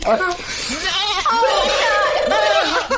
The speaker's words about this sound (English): And with the goat.